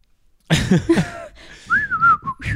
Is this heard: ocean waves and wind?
no